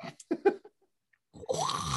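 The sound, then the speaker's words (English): A northern potoo calling: a few short guttural croaks, a brief pause, then a longer harsh, raspy retching call that swells and holds, loud and rough like a belch. “I would like a northern pot too.”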